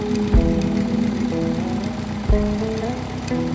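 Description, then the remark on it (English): A motorcycle engine runs at a steady idle, its low throbbing drone pulsing evenly, with two brief louder thumps partway through. No one speaks. “When you're riding, and you're riding the motorcycle, and you don't have no helmet or no facial gear or whatever, and you're smiling the whole time.”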